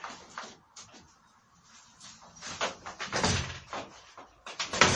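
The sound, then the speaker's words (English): A door swings shut with a dull thud as someone leaves, amid shuffling and handling noise, followed by another knock of movement at the end; no one speaks. “Make sure that door's locked.”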